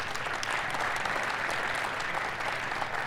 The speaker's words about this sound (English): Thank you so much, Nick. A big round of applause for Nick Grimes first.